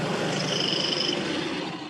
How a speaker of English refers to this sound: Yeah, a truck drove by.